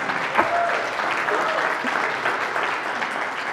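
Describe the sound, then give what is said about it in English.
Steady applause from an audience fills the whole stretch, a dense, even wash of many hands clapping with no pauses, for a man on stage who has just handed the speaker $100. “Javier, come on, let's give Javier a round of applause.”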